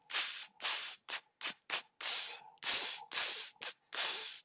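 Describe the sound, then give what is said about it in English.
A voice imitates a cymbal sizzle with about ten bright, breathy "tss" hisses in a rhythmic pattern on counts 1, 3 and 4, mixing longer sustained hisses with short clipped ones, fairly loud and with no other sounds. “If I was going to sizzle, it would sound”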